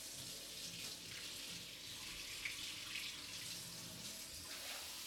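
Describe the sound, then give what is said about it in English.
A tap runs steadily for several seconds, water splashing and hissing as it pours into a favourite drinking glass in a kitchen, with no talking. “Brief interlude while Chris fills his favourite glass with water.”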